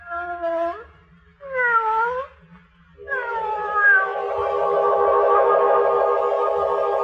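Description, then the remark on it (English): A yellow-eyed cat belonging to Lubos, watching from a doorway, meows twice in quick succession, then lets out a long, wavering yowl that holds for several seconds, loud over a faint low rumble. “The music, and the cat with the yellow eyes watching from the doorway, like death.”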